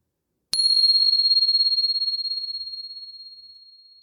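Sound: meditation bell ringing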